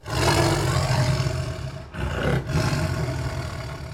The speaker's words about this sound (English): But he doesn't have long to contemplate his new situation because a saber-toothed tiger, watching him emerge from the orb, leaps upon him, killing him.